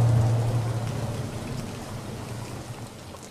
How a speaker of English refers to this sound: I've been told to board the plane. The engines are running.